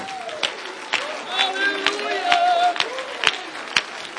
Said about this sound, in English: Come on, get on your feet for a minute and clap your hands.